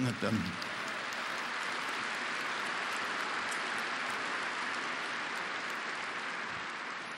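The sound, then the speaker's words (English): An audience breaks into sustained applause for the managers, a dense, steady wash of clapping that holds at an even level for several seconds with no voices on top. “They're appreciated by you, and we want to give you a chance to applaud them.”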